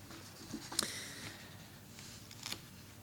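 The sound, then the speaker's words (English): Soft paper handling: a couple of brief crinkly rustles and a light peeling snap as sticky paper pages are separated, quiet and with no voices. “Sticky paper.”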